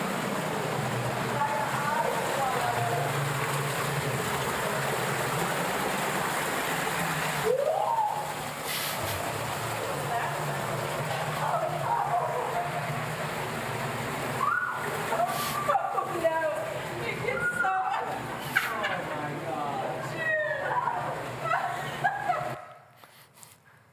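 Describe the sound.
A steady rush of cold spring water, waist- to ankle-deep, flowing through a 1,700-foot tunnel, echoing, loud and constant throughout, with shrill screams and squeals of people walking through it breaking over it and fading out at the end.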